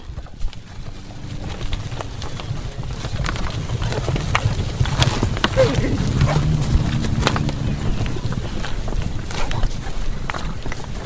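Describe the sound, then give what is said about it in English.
A herd of cattle, pushed by a dog, runs past into a new field as a wire is pulled back, a steady jumble of hoofbeats thudding on the ground for several seconds with a low rumble beneath, continuous. “The dog was pushing them into the new field, although they didn't need much temptation,”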